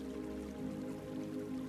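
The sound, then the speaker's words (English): Soft, steady rush of a waterfall, faint and distant and growing fainter, with a continuous low hum beneath it and no voices. “In the distance, the sound of the waterfall is becoming more and more faint.”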